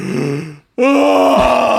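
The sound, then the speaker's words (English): A voice imitates a huge, drawn-out yawn a girl made behind them on a street: a short groaning breath, a brief silence, then a loud, sustained open-mouthed moan that slides downward and fades. “like this massive yawn.”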